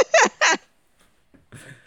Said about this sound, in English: just gasped because she saw the cat behind me. Am I wrong? Oh, no, I didn't see her. I was just breathing.